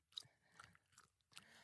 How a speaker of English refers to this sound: I just had a chewing gum. I'm sorry if you just heard me crunch it.